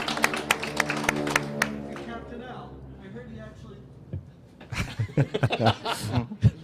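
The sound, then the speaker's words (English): A small crowd claps in scattered, uneven bursts, with laughter and a whooping cheer in the middle before a second, sharper round of applause near the end. “So a big round of applause, please”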